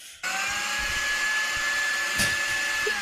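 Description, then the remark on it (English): A blender motor kicks on abruptly and runs at a steady, loud whine with a constant high-pitched hum, with no voices. “What a useful soundbite. 10 hours blender.”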